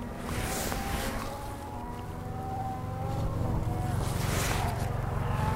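Cars drive past in a steady stream, a constant engine rumble swelling as two vehicles whoosh by, one near the start and another near the end, with a thin tonal whine above.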